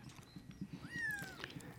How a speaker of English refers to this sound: I add kittens instead. So it's just basically just meowing. Little kitten meows.